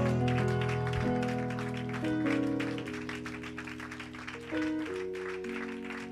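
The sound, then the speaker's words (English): A church audience claps hands steadily and rhythmically for Jesus, mixed with sustained keyboard or organ chords that shift every second or two; no one speaks. “Your clapping is infected.”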